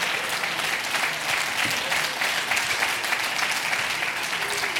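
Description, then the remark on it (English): An audience claps hands together in a dense, steady wash of applause, many overlapping crisp claps blending into a continuous, fairly loud roar with no clear individual rhythm. “I want you to clap your hand and say, in my house, there will be victory.”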